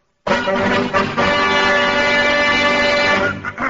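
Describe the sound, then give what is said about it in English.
A temple bell is struck hard, then rings on loudly with a dense, steady cluster of bright metallic overtones that barely fade across several seconds. No voices are heard. “You have just heard the high vibrations when our friend here smashed the temple bell”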